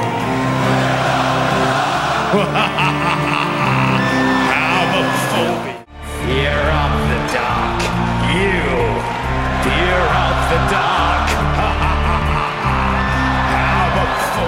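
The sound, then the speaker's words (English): A huge concert crowd at Rock in Rio sings along loudly over a live band during a live TV broadcast, many voices merging into a continuous chant with scattered whoops and shouts, briefly dropping out for a moment before the singing surges back. “So he lets the crowd sing it when it was live on TV, but on the album,”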